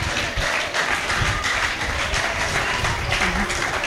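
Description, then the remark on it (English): An audience claps steadily for a pastor throughout, a dense, sustained burst of applause from many hands at a fairly loud level, with no clear voices on top. “God, can we clap for our pastor once again?”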